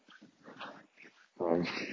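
A dog vocalizes: a series of soft, short whimpering noises, then a louder, drawn-out whine that rises suddenly and holds to the end.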